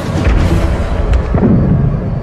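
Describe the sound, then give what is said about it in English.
A dense, continuous rumble of booms and bursts, like artillery or heavy gunfire with explosions during an air raid, thudding steadily and loudly with no clear pauses and no voices. “I started hearing a lot of loud explosions.”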